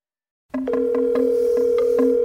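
After a brief silence, a steady electronic telephone tone starts and holds unbroken, loud, as a call to a woman's phone rings out, with faint regular clicks ticking underneath.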